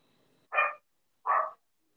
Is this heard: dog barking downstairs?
yes